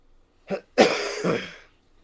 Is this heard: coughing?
yes